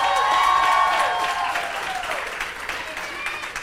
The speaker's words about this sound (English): second service, you guys are like, you get the extra blessing, because you don't even know why, and you're clapping. You're like, yes, I'm hungry, I'll receive it.